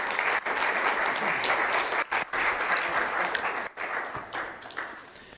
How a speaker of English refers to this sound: So guys, thank you so much for just taking a minute to share this. You give them a round of applause. Just thank you so much.